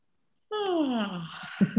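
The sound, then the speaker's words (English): A single drawn-out, voiced fake yawn, done deliberately by one person, sliding downward in pitch and trailing into an airy exhale, followed by a couple of brief breathy sounds. “This is a favorite of mine, fake yawning.”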